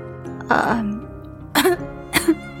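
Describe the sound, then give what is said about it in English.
A person clears their throat with a rough, voiced rasp, then lets out two sharp, harsh coughs spaced about half a second apart, with no other sounds around them. “… responded between obnoxious coughs”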